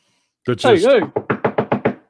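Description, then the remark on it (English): A brief vocal sound, then a quick run of about seven evenly spaced knocks, fairly loud, seemingly imitated by a voice rather than struck on a real door. “There are other ones that drive me crazy, the fucking ones that knock on the door.”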